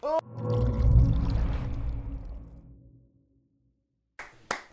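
A segment transition sound effect: a loud, rich whooshing swell that rumbles and fades out over about three seconds, then a short silence and two sharp, quick clicks.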